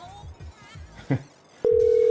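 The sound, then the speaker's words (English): A telephone ringback tone starts abruptly near the end, a loud, steady electronic hum of an outgoing call ringing. Before it come soft, evenly spaced low thumps and a brief click. “You got the phone. Dickhead, pick up.”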